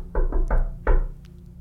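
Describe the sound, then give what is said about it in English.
A friendly knocking rhythm on a solid door: three quick, evenly spaced knocks, a short pause, then one final knock, clear with no talking. “Yeah, Calder's going to try the friendly knock.”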